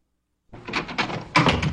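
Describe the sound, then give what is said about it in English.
A door is opened after a brief silence, with a quick run of rattling clunks and a louder knock-like thud near the end, no voices. “could you open the door, please?”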